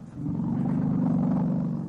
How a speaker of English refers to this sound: That's apparently an elephant roar.